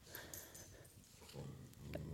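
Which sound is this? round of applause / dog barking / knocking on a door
dog barking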